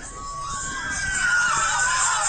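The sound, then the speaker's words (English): A party crowd in a video of a Texas kickback where the floor collapsed screams and yells continuously, many voices blending into a shrill, sustained roar that swells slightly louder toward the end, sounding thin as if played back from a phone. “No, if I hear screaming too early, start at the beginning.”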